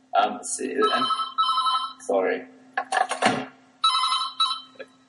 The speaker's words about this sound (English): Sorry, the phone.